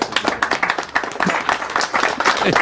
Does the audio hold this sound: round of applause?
yes